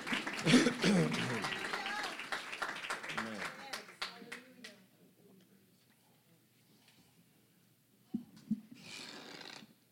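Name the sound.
audience hand clapping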